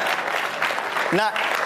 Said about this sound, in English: welcome to Socrates in the city. That, traditionally, that's when we applaud.